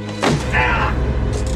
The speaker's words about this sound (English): Oof. She slammed the box on his legs. Yeah, the box of paper. And, yeah. 500, sheets of heavy GSM paper is a heavy thing. Isn't it?